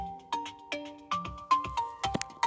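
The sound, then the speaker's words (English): A phone ringtone plays a quick, bright electronic melody of repeated plucked notes, steady, with no voices over it. “Yeah, my phone ringing off.”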